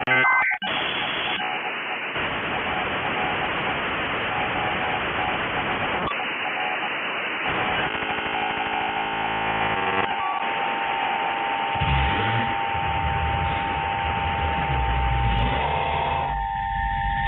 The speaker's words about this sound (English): Spooky radio static. I know it isn't much, but it is still so cool that stuff like this exists. And I'm pretty sure I can hear something growling or breathing in there.